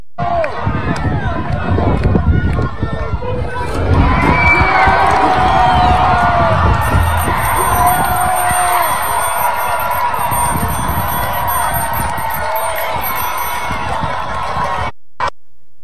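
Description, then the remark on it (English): A loud, sustained roar from a big crowd in a video being played, with cheering and shouting, dense overlapping voices and whoops rising after a few seconds and holding steady, with scattered high-pitched yells on top. “I want you to look at the crowd and ask yourself, as you watch this video, ask yourself, how many of the people in that crowd are going to teach my children in school?”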